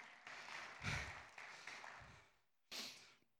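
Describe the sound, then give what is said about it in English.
An audience claps together in praise in a steady wash of applause that swells, tapers off into near quiet, then returns in a short final burst. “I didn't really need y'all to clap.”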